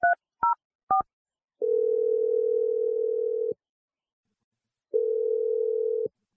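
Three quick two-tone keypad beeps of a phone being dialed, followed by two long, steady, low-pitched ringing tones separated by a silent pause. No one speaks.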